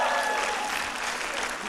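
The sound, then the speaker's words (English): A large church audience claps and cheers together for Jesus during a morning service, a dense, steady wash of applause for the full stretch without letting up. “Come on, let's give Jesus a cheer this morning.”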